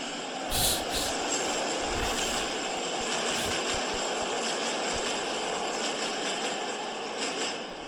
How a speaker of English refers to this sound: Hold on, this train going by.